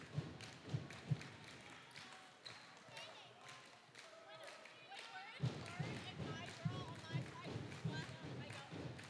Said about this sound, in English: A dribble, a spin, up, and no good.